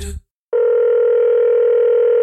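After a brief blip and a moment of silence, a steady, loud telephone tone hums continuously, the ringing tone heard on the line while a call is being placed.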